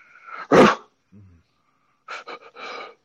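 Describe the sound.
A person imitates a barking dog to interrupt another speaker: one loud, breathy bark, a brief low grunt, then a quick run of three shorter barks after a pause.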